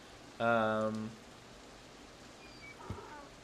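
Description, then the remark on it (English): Steady, soft rain hisses throughout, with a short, loud tonal call near the start and a faint clatter and higher tones later on. “You guys eventually make your way to the farm, get out of the rain for the night.”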